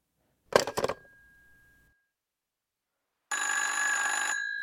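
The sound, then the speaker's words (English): A telephone bell beside a bed gives a short rattling ring that fades out at night. After a brief silence, a loud, steady ringing starts and carries on to the end, with no voices. “Who is trying to call me?”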